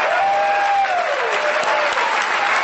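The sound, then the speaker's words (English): A crowd applauds loudly and steadily for the panel speakers at the Alcoholics Anonymous 80th anniversary convention, a dense wash of many hands clapping at once, with a faint tonal hum sliding downward underneath. “Round of applause again for our speakers”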